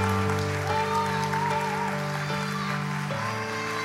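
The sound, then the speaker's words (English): Steady audience applause continues over sustained organ or keyboard chords that shift pitch a few times, the clapping forming a dense, even wash throughout. “Come on, let's keep clapping for them.”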